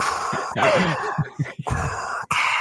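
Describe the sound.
A voice imitates a large man breathing heavily: a few loud, breathy huffs and groaning exhales in uneven rhythm, with no words spoken.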